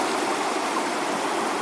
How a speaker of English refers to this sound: To me, there are few sounds better in life than rushing water.